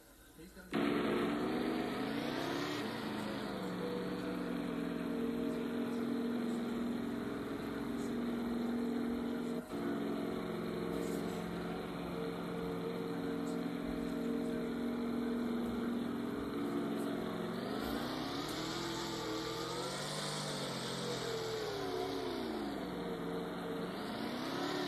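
A race car engine roars continuously on the track during a Cup Series race, its pitch climbing and dropping as it revs through gears, with a big rising-then-falling surge near the end.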